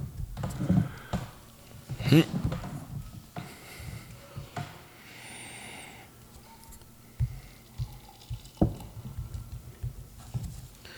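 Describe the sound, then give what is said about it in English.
End-to-End Burners, a dank IPA brewed in San Diego with Mason Ale Works, is poured badly into a glass with a steady, fizzing rush of a few seconds, framed by a few clinks and handling knocks, with faint background voices. “See, now, that was a bad pour, and it wasn't my fault.”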